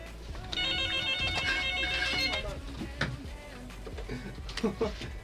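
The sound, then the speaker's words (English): A phone ringtone for an incoming spam call chimes in a repeating melodic pattern for a couple of seconds, clear, then stops as people start talking over background noise. “Who's what on the phone? The hell is that?”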